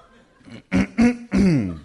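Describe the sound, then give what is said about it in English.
A voice imitates a 1930s rifle with three loud, throaty bursts in quick succession, the last one drawn out, with no other talk. “And it's a rifle.”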